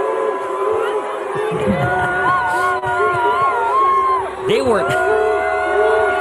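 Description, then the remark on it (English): A large crowd at a Fourth of July fair concert in Minnesota boos Ilhan Omar as she gets up on stage. The booing is loud and continuous, a dense roar of voices with long drawn-out jeers and yells rising over the din, never letting up. “Ilhan Omar, if this is a sign of anything, shows up to a 4th of July fair, Minnesota concert, and they start booing her out loud.”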